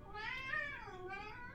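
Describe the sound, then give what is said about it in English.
A single drawn-out cat meow, fairly loud, with a rising then falling whine lasting over a second, heard on its own without talking. “Dang cat.”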